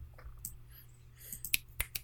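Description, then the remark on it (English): A few sharp finger snaps, done in place of clapping, crisp and bright, come at an uneven pace, with the loudest cluster near the end over a low steady hum and no talking. “What about if we snapped? Rather than clap.”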